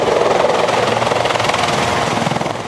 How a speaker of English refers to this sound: That helicopter carrying 14-year-old Isaac Lambden landed at Children's today thanks to a break in the weather that allowed the chopper to fly.